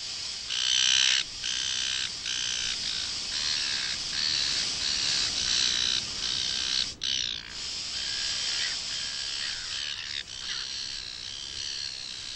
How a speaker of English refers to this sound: Because she goes into the tent, she pulls out the bug spray and she sprays the ants, and instantly they cut in audio of seagulls fighting, probably over a chip or something.